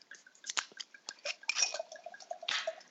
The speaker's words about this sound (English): So, we should open the wine, no? I mean, we should drink. Yeah. I'm going to pour in my glass.